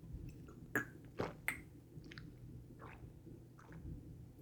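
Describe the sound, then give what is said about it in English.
Someone sipping and swallowing Granville Island Brewery beer on a Friday night: three sharp, wet mouth clicks and gulps in quick succession, then softer, fainter swallowing sounds. Quiet overall, with no talking. “I'm going to have a Friday night sip.”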